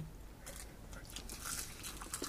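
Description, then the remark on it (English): Crisp, crackly chewing of a crunchy Hello Kitty seaweed snack, a run of quick irregular crunches with bright snapping bursts, fairly quiet and with no talking over it. “But, a very, very good seaweed as compared to a meh Oreo.”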